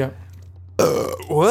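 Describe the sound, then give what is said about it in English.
A single loud burp rumbles out suddenly after a quiet moment, made while listening to a song's bridge, followed right away by a brief voiced exclamation. “It was so phenomenal, I burped.”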